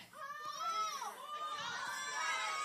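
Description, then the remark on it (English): A group of children shout out at once the areas in which they need comfort, their overlapping high-pitched voices forming a loud, lively jumble that rises and falls without pause. “But I want y'all to yell out areas that you need comfort in.”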